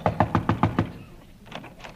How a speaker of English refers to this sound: All right, knock on the door. She's waiting for you.